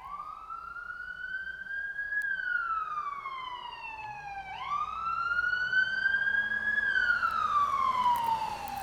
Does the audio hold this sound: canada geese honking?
no